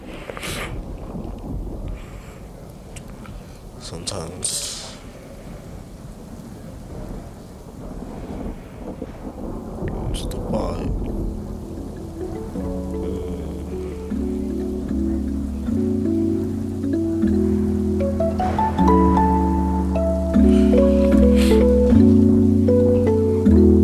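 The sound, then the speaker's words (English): A song's storm intro: rolling thunder and steady rain fill the first half, with a few louder rumbles, before sustained musical chords swell in and play over the continuing storm noise. “Oh, I think it's this one, yeah. It's this one. Storm intro.”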